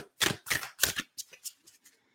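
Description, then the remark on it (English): Cards are shuffled, riffling and snapping in three loud bursts, then a run of softer, quicker flicks that trail off into quiet, all crisp and papery with no voices. “That was way too many cards. We're just going to put those right back.”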